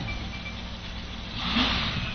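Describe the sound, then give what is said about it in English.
A red fire truck with a black stripe across the hood revs up and accelerates through the timing light in a B-ladder firefighting contest, a steady low rumble with broad roar that swells louder in the last second. No one speaks. “Got that red B truck. Little black stripe right across the hood. Mean looking. Here they go.”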